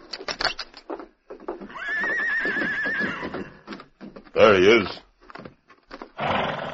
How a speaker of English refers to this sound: Man alive, look at that stallion and that riding gear. Why, only the Lone Ranger has a horse and gear like that.